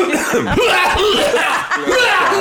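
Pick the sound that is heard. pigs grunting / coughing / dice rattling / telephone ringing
coughing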